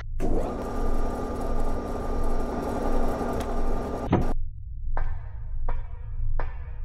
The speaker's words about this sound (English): I'm opening the shuttle's door. For security reasons, please remain in your seat until the captain releases you. Will do. Shuttle doors opening.